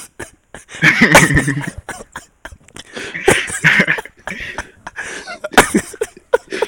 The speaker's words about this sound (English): Dog, this man wheeze on you. Not even wheeze.